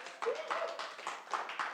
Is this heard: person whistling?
no